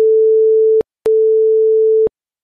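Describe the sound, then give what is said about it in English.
Two steady electronic beep tones at a single mid-low pitch, the first slightly shorter than the second, separated by a brief silent gap. Both are loud and clean, with faint clicks at their starts and stops. “So which was longer, the first two beeps together or the longer beep on its own?”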